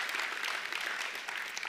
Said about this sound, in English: Give that a huge round of applause.